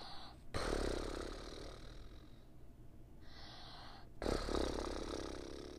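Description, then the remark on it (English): Someone makes a long, buzzy fluttering sound with their lips, mimicking the twang of a door-stop spring. It wobbles on for several seconds, breaks off briefly, then resumes, with no talking. “It sounds like one of those things that stop the doors, and then like you used to pull on it when you were kids, and then it would like shake and stuff.”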